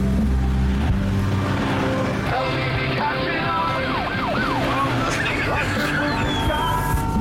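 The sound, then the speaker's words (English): An emergency vehicle with its siren on passes outside a window, its rising and falling sweeps swelling over a steady rumble of road traffic, with faint voices in the background. “so there shouldn't be any, like, emergency vehicles with their blues and twos on.”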